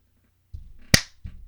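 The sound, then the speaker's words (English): A single sharp, loud hand clap cracks out once, bright and snappy, with soft low thumps and rustling just before and after it; a book is dropped as the hands clap. No one speaks. “When I clapped, I dropped your book.”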